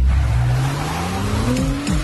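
The 355-horsepower turbo V6 engine of a new Acura MDX Type S SUV revs up loudly and steadily, its pitch climbing through gear changes as the vehicle accelerates hard, with a brief tire squeal near the end and no voices.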